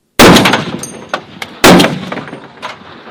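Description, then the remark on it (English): Two loud, sharp blasts from a .50 caliber rifle with a muzzle brake, about a second and a half apart, each trailing off in a long rumbling decay, with a few faint clicks between. “The problem I got here is it's been a long time since I've shot a 50 caliber, and I'm sure that I'm not as good as I used to be”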